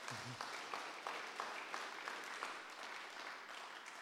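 A crowd claps steadily for several seconds, a dense patter of many hands with a few sharper claps standing out, and a brief low voice sound at the very start.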